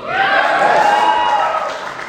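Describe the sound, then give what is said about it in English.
An audience bursts into cheering and applause at the mention of the show Fairly OddParents, a dense, steady roar of many voices and clapping that holds loud for about two seconds before easing slightly. “I think a bigger applause than Johnny Bravo was saying.”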